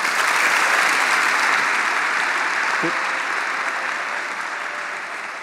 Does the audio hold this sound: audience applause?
yes